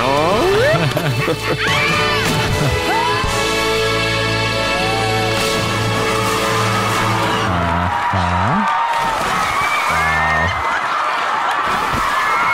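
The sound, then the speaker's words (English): A crowd of women of an island shriek and whoop over and over as they fall into the ocean amid loud splashing water, a dense, continuous chaotic din with a steady tonal backing underneath. “Also, okay, that's all the ladies of the island falling into the ocean.”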